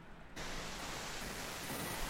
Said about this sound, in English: Is that your fan?